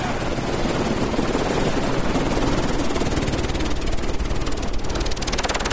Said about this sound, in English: I'm going to leave this running while I get out so you can hear from the outside that it really was a helicopter and not a sound effects CD or something.